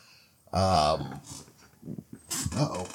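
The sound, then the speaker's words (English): A puppy whines and cries in short, high-pitched bursts: one loud wavering whimper near the start, then softer yelps and another whine a moment later. “I got a crying puppy.”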